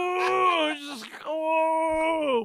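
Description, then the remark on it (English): Dogs play-fighting, heard as loud, drawn-out whining moans: one long wavering cry that breaks into a rough scuffle of noise, then a second steady, sustained whine. “they were taking a pause in their playing fight. So I feel like they're back at it again.”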